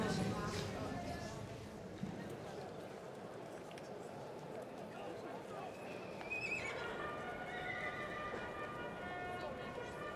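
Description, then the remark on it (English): A horse, number 6, whinnies with a shrill, wavering neigh while its hooves clip-clop steadily as it keeps circling round and round, set against a busy background murmur of voices. “Horse 6. He keeps circling round and round.”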